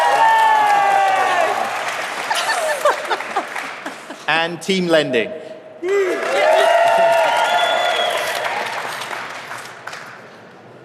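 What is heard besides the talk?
audience applause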